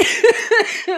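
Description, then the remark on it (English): A rapid series of three harsh, raspy, loud coughs in quick succession within about a second with no talking between them, from a person getting over being sick. “I'm having a fucking coughing fit.”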